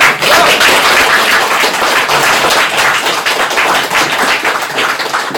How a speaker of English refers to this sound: Can we please have a big welcome and a round of applause